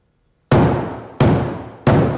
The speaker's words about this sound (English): Where is that coming from? Is that up there? Where's the hammering coming from? Stop the hammering! Somebody go up there and stop that hammering!